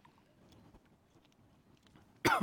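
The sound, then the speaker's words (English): A single sharp, loud cough bursts out at the very end, following a couple of seconds of near-silence with faint low rustling. “I could tell you about how I'm about to cough my head off right now too.”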